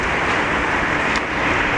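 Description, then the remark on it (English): Heavy street traffic roars in a steady, loud wash of engine and road noise as city buses drive past on the street, with no voices. “So I'm just standing here watching the buses go by.”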